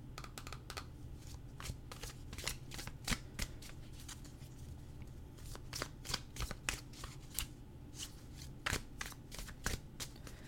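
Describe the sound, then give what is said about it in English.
Oracle deck cards being shuffled, a rapid series of crisp flicking and riffling snaps with a steady, papery texture, heard alone without any talking. “So let's go ahead and give it a shuffle and see what card I pull.”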